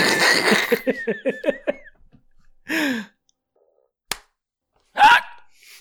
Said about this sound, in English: That's my clapping. I get the last clap.